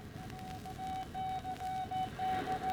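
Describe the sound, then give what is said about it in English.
A steady, high-pitched Morse code tone keys on and off in short and long beeps, sent rapidly over a constant bed of hissing radio static, as an urgent warning message is transmitted by radio across the Atlantic to a ship at sea. “Across the wide wastes of the dark Atlantic, the Morse signal travels.”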